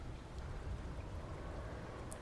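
Steady, muffled rain and a low rushing wind form a constant, fairly quiet wash of noise, heard from inside a treehouse, with no voices.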